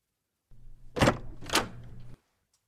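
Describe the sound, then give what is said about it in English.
A front door opens: a low rumbling scrape with two sharp clattering bursts from the latch and swing, lasting about a second and a half before cutting off abruptly. “I got to go answer the door here.”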